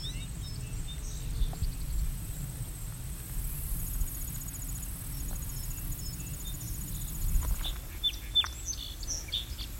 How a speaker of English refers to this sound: Here's that American goldfinch again.